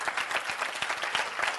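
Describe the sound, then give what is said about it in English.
A crowd applauds during a sermon with dense, steady clapping. Many hands overlap into a continuous crackling wash without distinct beats, held at an even moderate loudness throughout. “Is that the best clapping y'all can do right there?”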